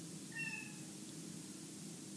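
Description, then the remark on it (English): A single short, faint meow from a pet indoor cat, rising briefly, before a steady low background hum with no other sounds or voices. “My cat is crying.”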